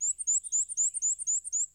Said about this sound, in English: Here and there I meet the black and white creeping warbler, whose fine strain reminds me of hair wire.